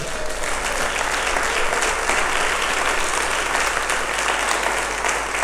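A large audience claps steadily and loudly for several seconds as applause for the Lord during a sermon, a dense, continuous wash of applause with no voices standing out.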